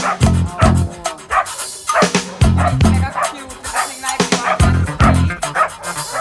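A dog barks loudly and repeatedly in quick bursts, the sharp woofs coming in uneven clusters, with a few higher yips mixed in.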